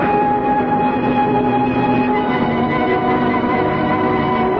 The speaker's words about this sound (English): The train started up. It's all right. I don't want to go to Rome anyway. I want to stay right here on this train and go wherever it's going. You mean you don't know? Where is it going? Why, to Venice.